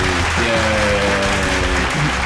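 A steady round of applause, dense and unbroken clapping from a crowd filling the whole stretch at a fairly loud, even level, with faint tonal music or hum running underneath.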